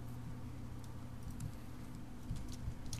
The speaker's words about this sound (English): He's Googling it. You can hear him typing furiously.